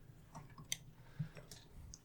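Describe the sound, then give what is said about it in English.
Scattered, irregular key clicks as a cat steps across a computer keyboard, a handful of soft taps with one or two sharper presses, quiet, with no one talking. “My cat is trying to crawl on my keyboard.”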